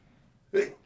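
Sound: sneeze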